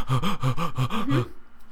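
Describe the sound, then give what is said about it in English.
A person demonstrating a breathing exercise rapidly and forcefully breathes in and out, about six quick voiced pants in a steady rhythm, loud, before it abruptly stops into quiet. “Did you do like this breathing?”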